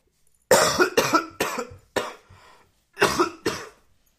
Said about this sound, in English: Hold on, let me cough.